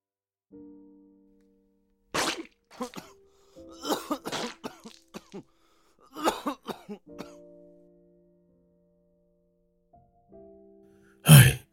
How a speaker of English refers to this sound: Then he coughed up more blood.